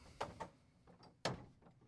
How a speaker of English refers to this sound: I think you have to push the door. I think it's. Is it a push? Should know this by now.